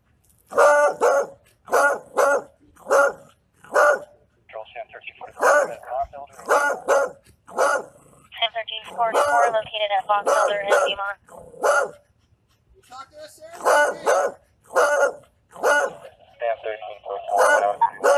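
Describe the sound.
A dog barks loudly and insistently in rapid bursts of two or three, with stretches of rough growling and snarling in between, while people talk.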